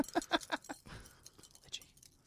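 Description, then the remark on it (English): Dog tags jangle in a quick run of bright metallic clinks, about six in the first half-second, then settle into softer, scattered rattles. Fairly quiet, with no voices. “We got dog tags? Is that what that is?”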